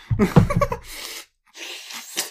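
slurping a drink

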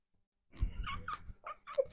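cat vocalizing

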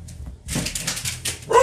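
dog barking

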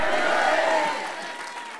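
audience clapping and shouting

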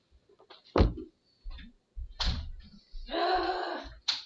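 door being closed

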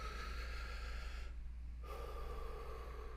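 slow deep breath

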